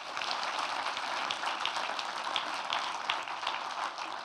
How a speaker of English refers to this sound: I am going to be joined by, if you give them a big round of applause when they come up onto the stage, writer-director Dominic Savage.